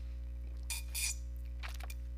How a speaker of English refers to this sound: Sip of my coffee.